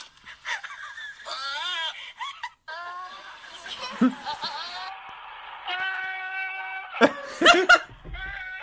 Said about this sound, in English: That. And also, to goats screaming.